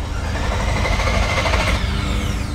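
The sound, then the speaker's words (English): A flooded car engine cranks with a fast, steady mechanical churning, loud and continuous for a couple of seconds without clearly catching, as men in an apartment complex parking lot try to start it. No voices are heard. “In the parking lot that rings the apartment complex, men with sweat-drenched brows were leaning over the hoods of flooded-out cars, trying to get them to start.”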